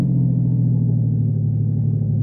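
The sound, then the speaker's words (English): A car engine hums steadily from inside the vehicle, a low continuous rumble with no voices, holding an even drone as the car drives along and turns. “Hey, what are you turning here for?”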